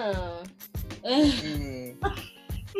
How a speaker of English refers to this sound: Yawn.